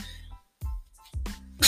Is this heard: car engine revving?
no